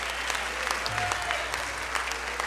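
An audience claps its hands to give the Lord the glory, in a steady, dense wash of applause, many overlapping claps forming a continuous crackle with no clear individual beats.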